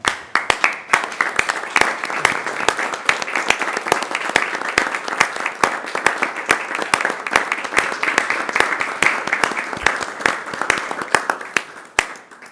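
A crowd bursts into sustained, loud applause, many hands clapping in a dense, steady roar for about twelve seconds before it trails off at the end.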